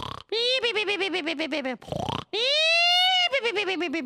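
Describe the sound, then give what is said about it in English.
A voice imitates snoring with a comic, sing-song run of vibrating, grunting snores, one long rising drawn-out snore in the middle, then more pulsing snorts. Loud and theatrical, no words spoken. “You mean like he was snoring?”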